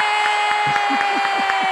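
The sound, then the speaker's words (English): A steady wash of applause and cheering fills the short moment, dense and even in loudness, with faint rhythmic pulses running through the crowd noise, welcoming a guest onto a show. “Finally, applause.”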